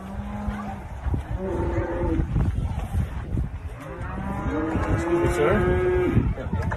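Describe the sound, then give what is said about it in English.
Farm animals at a petting zoo call out with long, drawn-out lowing moos, several overlapping calls one after another, loud amid a busy outdoor din. “Bro, we're at a petting zoo. It says feed the sheep, dude.”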